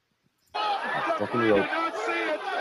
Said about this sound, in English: It's the now let's do this crowd. Let's hear the crowd real quick.